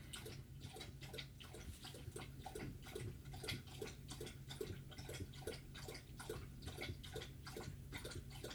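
A dog laps water steadily, quick wet slurps repeating in a fast, even rhythm over a low background hum, with no one speaking.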